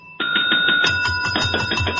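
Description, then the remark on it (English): Two handheld bells, one held in each hand, ring loudly and rapidly, the clapper jangling continuously; the second, higher-pitched bell joins partway through, both ringing together to the end. “Oh, I've got, like, stereo bells, I've got one in each hand. Can I do the bell?”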